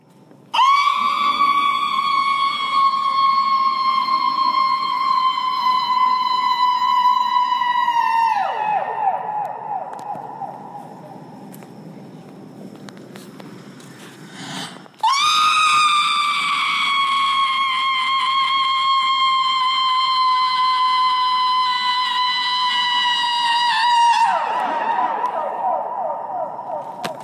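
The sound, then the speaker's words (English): A performer on stage at the Hirshhorn howls a long, loud, steady scream into a microphone, performing Yoko Ono's Voice Piece for Soprano, holding one high pitch before it sags and falls away, then does it again with the same held, siren-like tone. “… followed the checklist, moving purposefully across the stage and howling into the mic, and the crowd watched silently, enraptured.”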